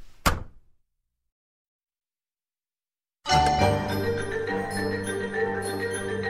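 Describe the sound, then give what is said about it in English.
A door gently closes behind someone entering the Delighted Wife, a single soft thud that fades quickly, followed by about three seconds of silence before steady music swells in. “Slowly, people start to reach for their swords as the door gently closes behind you.”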